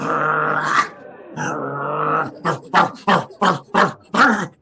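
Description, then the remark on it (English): A man's voice imitates hyenas barking: two long, drawn-out growling calls followed by a rapid run of about seven short, harsh yelps, loud. “Hyenas barking at you.”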